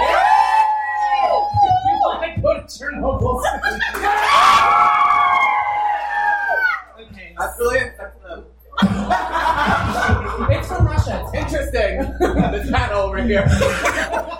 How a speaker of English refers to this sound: Okay, so I'll let the audience decide which place we have, because we have two places left to go. It's Chernobyl and the Rainbow Road for Mario. Rainbow! Okay, if you want Rainbow Road, scream.